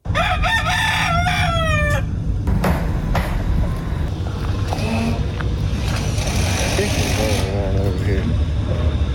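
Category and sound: animal, chicken crowing and clucking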